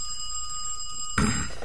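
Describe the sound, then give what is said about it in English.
A steady, high-pitched telephone ring at the Trixie Dixon Detective Agency sounds for about a second, then cuts off abruptly into a short burst of noisy clatter. “Now I'll call right back and you answer the phone like a good little secretary.”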